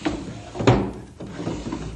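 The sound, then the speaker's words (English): A desk drawer is pulled open with a wooden scrape and a couple of knocking thumps, followed by rummaging rattles as someone searches the desk drawers for a small package holding an old medallion. There is no talking. “It's around here someplace. I think in one of these desk drawers.”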